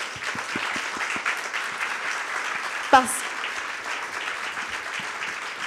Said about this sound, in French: Et d'ailleurs, je voudrais qu'on les applaudisse, s'il vous plaît.